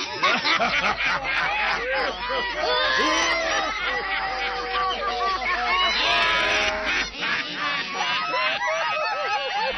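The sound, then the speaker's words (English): Loud, frantic squawking and honking from a house on giant chicken legs as it moves, many harsh calls overlapping in a dense, chaotic stream that continues without pause for the whole stretch. “Oh, it's moving. It's on giant chicken legs.”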